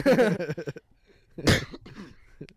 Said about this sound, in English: Sorry, listeners. What? You just cough right in the mic. Sorry, listener.